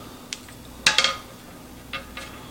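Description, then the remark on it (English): Headphone packaging being opened: a few short crinkling, scraping bursts of handling noise, the loudest cluster in the middle and softer scuffs after, with no one talking. “All right, so let's open this up, see what's inside, see how they sound, and here we go.”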